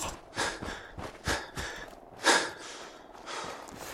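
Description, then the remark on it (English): A voice imitates shaky, frightened breathing: a series of quick, uneven breaths and gasps, fairly quiet, with one sharper inhale near the middle and no words spoken. “someone is staring straight ahead, but the dinosaur is like right over their shoulder, and they just stare straight ahead with their shaky breathing.”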